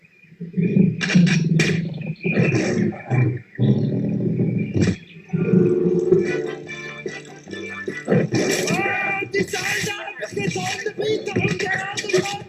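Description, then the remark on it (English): A tiger roars loudly in several rough, rumbling bursts, with growls and shuffling, rattling noises filling the gaps between them. “Hey, tiger, wake up!”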